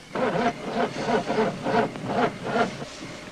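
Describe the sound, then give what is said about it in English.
A car engine cranks over and over without catching, a steady rhythmic churn of about seven strained turns, moderately loud, with no voices. “Won't start.”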